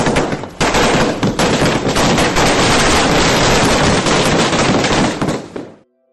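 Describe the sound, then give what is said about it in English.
Fireworks from a small, intimate display at the end of a long day of celebrations explode in a dense, rapid volley of loud crackling bangs, continuous for about six seconds before cutting off abruptly. No voices are heard. “But no matter where you are, there are smaller, more intimate fireworks displays.”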